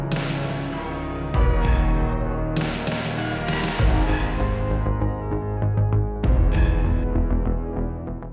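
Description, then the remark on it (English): Synth beeps and boops from the Stranger Things 2 score over a steady electronic tone, punctuated by bright bursts of gated hiss that cut off abruptly, repeating in a loose rhythm several times with no voices. “The beep boop hiss cut, like it's four rhythm points.”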